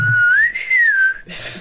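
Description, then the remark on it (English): A person whistles a short, Western-style phrase: one clear, sustained note that rises, swells and gently falls, ending in a breathy rush of air. “I want to do the thing with the, like in the westerns when it's like, you know what I mean? Yeah, the whistle thing.”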